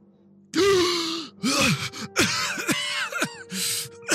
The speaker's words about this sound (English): You see Zoramir. I'm going to reach in there and pull him out as fast as I can. As he gasps for air, 14 seconds left before he suffocated.